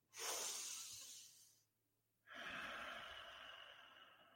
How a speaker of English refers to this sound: I do that while I'm in line. So I take a deep breath in, I hold it in through my nose, and then I really release it through my nose.